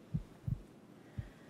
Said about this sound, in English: Or you might pause now and simply listen to your own heartbeat if you want to notice God's miracles all around you.